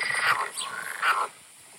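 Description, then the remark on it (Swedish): Frogs croak outdoors in Klagshamn in spring, in two raspy, pulsing calls close together, then fade into a quiet background hiss. No one speaks. “Här kommer ett klipp på grodor som jag har. De låter fan med ribbit, ribbit.”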